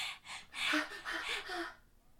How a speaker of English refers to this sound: Just did a giant zoom into his face. He's about to die. Heavy breathing.